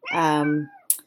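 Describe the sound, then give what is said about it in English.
A single drawn-out, fairly loud meow from a pet cat that has just walked into the room, followed by a brief faint breathy rustle. “If somebody hears a cat meowing, that's how I'm touching the earth too, through my cat.”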